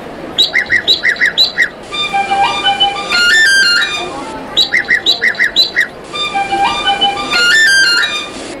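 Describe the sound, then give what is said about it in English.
An Irish blackbird's bright, fluty song phrase alternates twice with a clear, whistle-like melody of a jig played by a person, each short burst of birdsong followed by a longer run of tones, fairly loud. “this one is for the Irish blackbird and me then playing the calavel jig”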